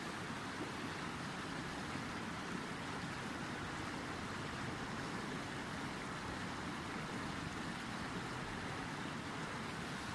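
flowing river water

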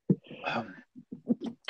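sneeze

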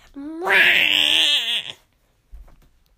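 cat yowling

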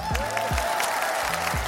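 applause

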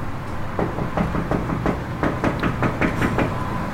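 knocking on a window

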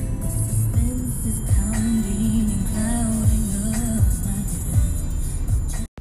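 car interior

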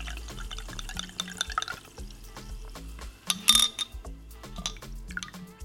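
pouring a drink

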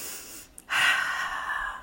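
breathing in through nose

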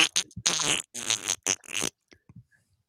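fart

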